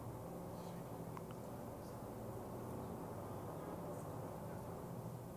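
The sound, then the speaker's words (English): A helicopter drones steadily overhead, its deep rotor rumble filling the whole stretch with loud, constant low-pitched noise and a faint choppy texture underneath. “It's a helicopter.”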